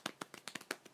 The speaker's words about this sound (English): Round of applause. Golf clap. Golf clap.